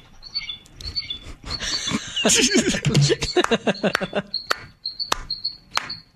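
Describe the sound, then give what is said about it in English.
Crickets chirp in a thin, steady high trill, briefly swamped midway by a louder burst of rough, growling animal noise before the chirping carries on alone. “It's crickets because they know that the daylight savings time is coming.”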